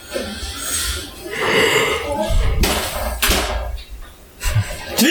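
A door is kicked repeatedly, giving several heavy, booming thuds at irregular intervals, each with a rattling crack, over a rough, noisy background.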